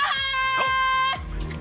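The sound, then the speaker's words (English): A person screams at a swarm of caterpillars on steps, making them shake, letting out a loud, piercing scream that holds one shrill, wavering pitch for about a second before breaking off into a rougher, lower trailing sound. “They don't like when you scream. Let me try.”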